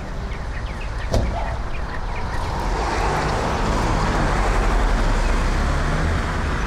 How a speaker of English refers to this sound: Guy in the pickup truck across the street just stopped to look at somebody throwing out a desk.